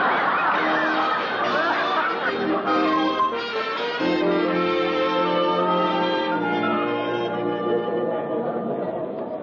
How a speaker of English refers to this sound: Oh, my, there's a crowd.